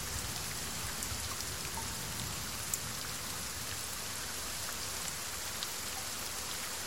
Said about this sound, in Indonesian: Hujan. Hujan gak akan pernah reda di antara kita. Tapi seenggaknya, kita ada di bawah hujan itu berdua.